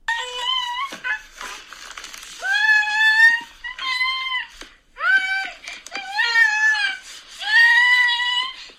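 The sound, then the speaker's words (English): A baby wails, the so-called "whale" cry, in long, rising and falling bursts with strong harmonic, high-pitched cries separated by brief gasping pauses, loud and continuous with no one talking. “You've ever been around a baby, you know what the frickin' whale is.”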